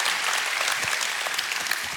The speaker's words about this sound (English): If you enjoyed worship and everything that you've been led in today, would you give them an applause and thank God for how they've led us today?